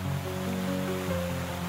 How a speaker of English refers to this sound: and they're standing in front of the majestic fountains of the Bellagio Hotel in Las Vegas.